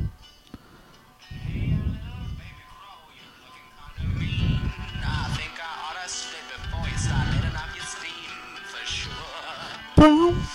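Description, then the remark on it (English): Deep, rough pig grunts in a played music clip come in several heavy bursts a few seconds apart, loud, over a thin layer of squealing, tonal sounds, ending in a sharp high squeal. “Let's just get the sexy pig bit.”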